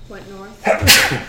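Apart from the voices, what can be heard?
sneeze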